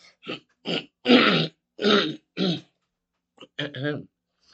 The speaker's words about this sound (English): Sorry about the cough. You're going to get this. Sorry.